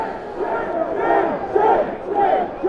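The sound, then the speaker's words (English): A large, angry crowd shouts and chants in unison, loud, with a steady rhythmic swell of many voices repeating "shame, shame, shame" at police over a continuous roar of yelling, after police fired tear gas and pellets at the crowd. “And the crowd was screaming at them, shame, shame, shame.”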